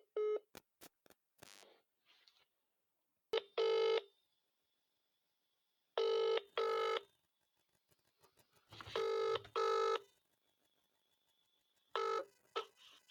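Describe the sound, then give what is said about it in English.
A burst of rapid telephone dialing beeps, then a ringing tone repeating in short double pulses with gaps of silence between them. No one speaks. “We'll try and give him a call now, okay?”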